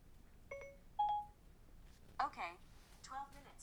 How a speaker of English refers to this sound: So, hey, Siri, set a 12-minute timer.